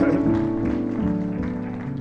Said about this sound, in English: Let's give God another hand clap of praise for his goodness.